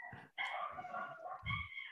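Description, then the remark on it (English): A dog barks loudly, a quick run of three strained, drawn-out barks with barely a pause between them, and no one talking. “Forgive the dogs if you guys hear that.”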